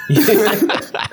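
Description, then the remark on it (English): A person fakes a cough, a drawn-out rough hack followed by two shorter, sharper coughs in quick succession, loud and unaccompanied by speech. “Dude, when I come across words like that and that I don't know how to pronounce it, I'll just like kind of mumble and pretend to cough or sneeze.”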